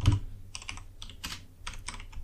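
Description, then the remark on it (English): Rapid clusters of crisp keyboard keystrokes, typed in short uneven bursts with brief pauses between them, fairly quiet with a low background hum and no talking. “Oh, would help if my keyboard worked.”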